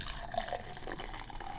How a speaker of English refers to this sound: You got something I can pour this into? I do. I have a glass from Epic Film Guys.